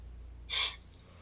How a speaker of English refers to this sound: Sniffle.